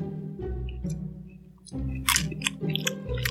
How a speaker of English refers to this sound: I'm just like picking out on this fucking Chex Mix. It's ridiculous.